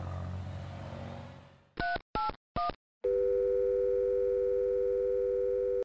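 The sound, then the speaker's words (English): In a phone booth, background noise fades out, then three short dialing beeps sound, followed by a loud, steady telephone dial tone holding clear until the end. “Standing in a phone booth, staring down at the 1994-95 Yellow Pages,”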